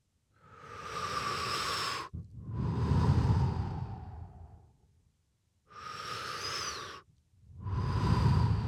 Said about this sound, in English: Oh yeah, the protein bar, the energy bar of breathing deeply. Love it. Practicing it often these days.